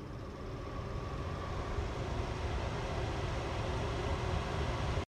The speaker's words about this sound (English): Oh! Takes away steam from your kitchen. Good. What a good sound. I know exactly what it is. Do you know what it is, Logan? I know. The extractor fan.